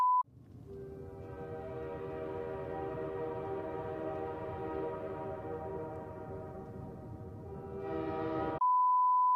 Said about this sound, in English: We can see it in the distance. This would be an apt time for your train to go by.